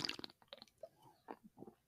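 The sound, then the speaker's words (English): Wet slurping of a 5.2% ABV beer, several short crackly sips and mouth noises in irregular bursts, with one drawn-out gulp in the middle and no talking. “It's a big old slurp.”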